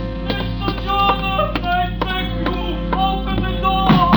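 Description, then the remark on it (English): Heavy pounding on a cafe's glass-paned front door at 2 o'clock in the morning, about eight or nine blows in a steady, insistent rhythm, thudding over a constant droning tonal background with no voices. “like it when somebody comes slamming at my tambourine door at 2 o'clock in the morning.”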